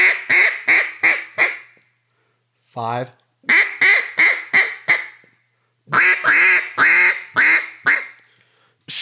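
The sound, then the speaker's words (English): A person produces loud duck quacks as a greeting call, in quick descending runs of four or five, separated by a single lower, drawn-out quack, with brief pauses between the series. “So that quack is the basis of those greeters.”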